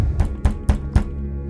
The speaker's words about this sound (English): I received a knock on my lab door.